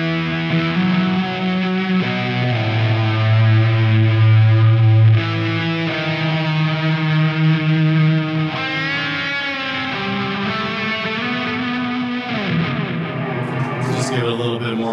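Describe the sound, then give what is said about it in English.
A sustained, distorted electric guitar lead plays melodic lines through a phaser with a swirling sweep, trailing delay echoes and a slight boost on the distortion, loud with no talking. “I do have, I think it's like a phase nine, a phaser on there, along with the delay and probably a little bit of a boost on the distortion.”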